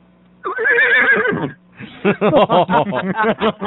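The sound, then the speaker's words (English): A horse neighs loudly, a long high whinny followed after a brief pause by a rapid, fluttering series of shorter nickering bursts. “I would always say horse, because that way you always have a ride.”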